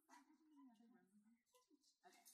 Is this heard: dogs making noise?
yes